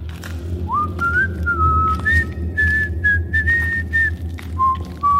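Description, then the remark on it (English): Someone whistles a cheerful, old-fashioned tune at night in a clear, steady melody that rises and holds long notes, over a low, rumbling background. “Then, cheerful whistling to an old tune.”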